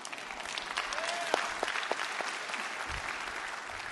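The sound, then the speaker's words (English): A crowd claps steadily in a dense wash of applause, with a few sharper individual claps and a brief whistle-like tone rising through it, holding at a moderate level for the whole stretch. “You can clap for that.”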